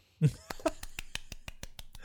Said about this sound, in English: Please clap.